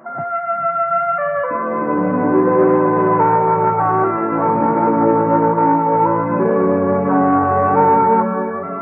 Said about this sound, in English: Yes, for the best in Friday night radio entertainment, remember to tune where you hear the familiar three chimes for the Bob Hope Show and the Phil Harris Alice Faye Show.